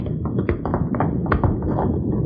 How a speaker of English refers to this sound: Don't stop here. Come on, that landslide's almost on top of us.